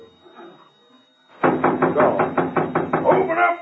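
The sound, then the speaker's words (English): Heavy, rapid pounding on a door starts after a quiet moment, about a dozen loud blows in a steady insistent rhythm with faint voices underneath. “Open up before I break the door down.”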